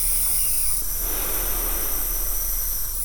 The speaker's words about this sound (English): Now, I inhale a salt water solution through a nebulizer for 45 minutes a day. It's one of my most important treatments, and I feel it when I skip it.